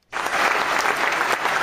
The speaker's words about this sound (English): Loving all of this applause.